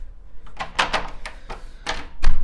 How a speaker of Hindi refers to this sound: Okay दरवाजा lock, यहाँ पर ताला, एक मिनट।